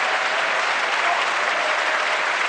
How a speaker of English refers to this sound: I was putting in the claps there.